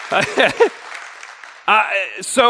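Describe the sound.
Light, scattered clapping from two people in a small audience, a soft patter of hands between stretches of a man talking loudly over a microphone.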